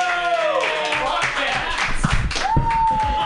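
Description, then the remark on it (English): A brief burst of hand clapping from a small comedy audience welcoming the next comedian, mixed with high, sliding cheers and whoops that rise over the applause before a sustained vocal note at the end. “Your next comedian, get your hands a clapping.”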